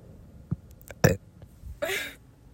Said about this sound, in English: I'm gonna burp.